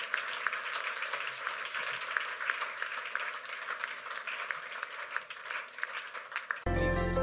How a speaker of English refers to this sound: Please rise to your feet. Give the Lord a big clap of praise. Hallelujah. All right. Can you clap your hands and bless the Lord?